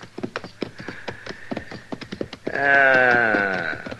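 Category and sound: animal, horses whinnying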